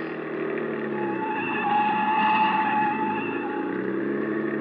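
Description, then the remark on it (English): A car engine roars steadily at high revs, swelling louder mid-way as the driver takes fast corners to shake off a car following behind, with a thin tire whine riding over the motor. No voices are heard. “Hey, try a couple of fast corners.”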